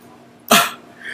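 A single sharp dog bark, loud and close, bursting out of a quiet background and fading quickly, with a faint high hiss lingering afterward.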